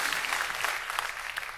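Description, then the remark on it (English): Steady applause from a group, a dense crackle of many hands clapping at an even, moderate loudness throughout, with no voices over it. “Cue the applause.”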